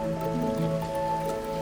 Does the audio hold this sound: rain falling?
yes